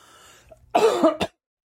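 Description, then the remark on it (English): A person coughs, a harsh burst followed by a shorter second cough, after a quiet, faintly noisy lead-in, then silence. “Okay, you probably, well, see, I forgot to mute everything and I'm coughing.”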